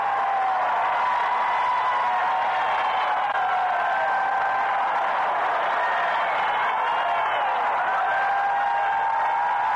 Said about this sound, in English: the crowd in the center are cheering madly